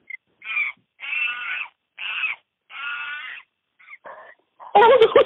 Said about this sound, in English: Did you just Google a video of Capuchins? Are you okay over there? I can't tell what's the monkey and what's you.